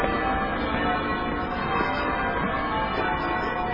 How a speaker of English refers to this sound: As the church bells are ringing out.